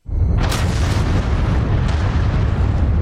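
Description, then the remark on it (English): A powerful explosion on the Deepwater Horizon oil drilling platform in the Gulf of Mexico on April 20, 2010 bursts in suddenly, then a deep, heavy roar and rumble carries on for several seconds without fading, with a few sharp crackles on top. No voices. “On April 20th, 2010, a powerful explosion rocks the Deepwater Horizon drilling platform in the Gulf of Mexico.”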